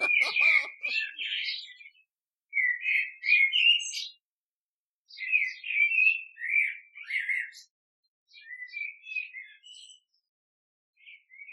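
A bird in a bucket, getting at food, chirps and squawks in four scratchy, rapid bursts separated by short pauses, the last bursts a little fainter, with a brief human sound at the very start.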